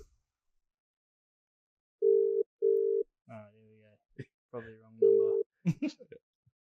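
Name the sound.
telephone dial tone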